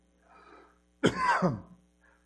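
A single harsh, throaty cough from a person who had esophageal surgery bursts out, preceded by a faint breathy rasp and trailing off into quiet.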